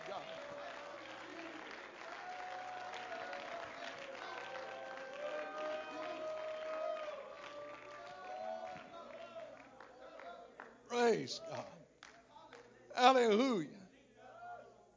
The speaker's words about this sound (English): Come on, why don't you stand to your feet right now? Let's clap our hands to the Lord and let's give some praise.